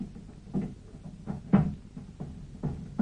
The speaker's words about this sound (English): What's he doing? It sounds as if he's moving the furniture about. He's barricading the door.